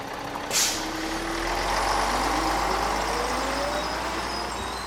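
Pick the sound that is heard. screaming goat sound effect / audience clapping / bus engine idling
bus engine idling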